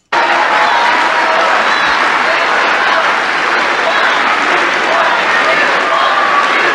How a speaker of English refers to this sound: But listen at the audience. Listen how they're cheering because they know what has happened.